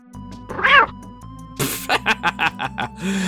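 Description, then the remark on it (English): A tiny, squeaky video-game roar from a lion cub character attacking a porcupine, sounding like a kitten's mew, one short rising-and-falling cry, followed by a sudden burst and a quick run of soft rhythmic pulses. No one speaks. “he sounds like a little kitty because he's still a cub.”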